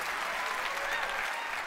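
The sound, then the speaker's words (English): A crowd applauds as Michigan State Senator Mallory McMorrow is welcomed to the stage, a dense wash of clapping hands that holds at an even, moderately loud level for the whole short stretch without any voices standing out. “Based on the applause you got in the beginning, I don't think that's going to be a problem.”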